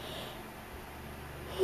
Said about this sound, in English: Sorry, I had to yawn.